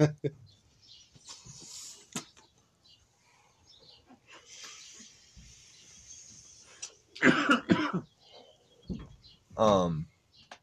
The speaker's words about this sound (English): Dude, could you, like, cover a little just to, like, mute that sound from this? No. We cough right in the mouth. It's corona time.